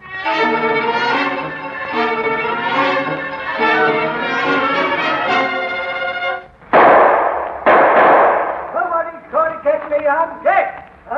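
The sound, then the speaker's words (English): Two loud, sharp gunshots about a second apart, fired by an old man from a cave during a shootout, each with a brief ringing tail, interrupt a sustained tonal passage; halting voices and a few softer knocks follow. “He isn't shooting so often now, Captain.”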